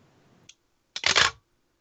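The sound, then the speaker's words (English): A medium format camera fires: a small click, a short pause, then a loud mirror slap and shutter clatter lasting under half a second, with a faint low hum beforehand. “So that sounds like a big mirror slap to me with a shutter at the end of it.”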